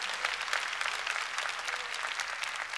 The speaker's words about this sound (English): Come on and clap your hands and praise God.